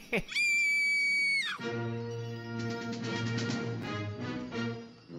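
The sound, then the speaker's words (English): A loud, shrill scream rings out for over a second, then breaks into a lower, drawn-out wailing voice that carries on with a strained, wavering cry. “has probably just reached the part of his deposition where the first victim screamed.”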